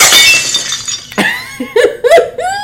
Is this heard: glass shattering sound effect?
yes